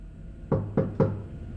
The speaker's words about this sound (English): That leaves only Mr. Isaac Harris's office. Bill walks down there, hesitates, and then knocks.